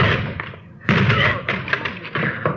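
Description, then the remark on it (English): A locked door is forced open by police officers with a loud impact followed by a rapid series of heavy thuds and rattling knocks, dense and chaotic for a couple of seconds. “Door's locked.”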